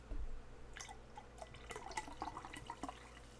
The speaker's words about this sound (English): This one looks more like beer as I was pouring it. It looks like Mountain Dew. Let me pour a little more. Can we hear it if I pour it? Let's see.